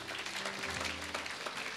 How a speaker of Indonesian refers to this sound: Tepuk tangan kita buat Tuhan.